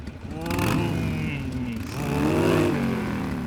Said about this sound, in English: For example, this is your standard motorcycle exhaust.